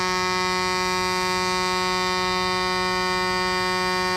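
A single sustained, very loud horn blast holds one steady, buzzing tone with rich harmonics for about four seconds, harsh and unwavering from start to finish, with no talking.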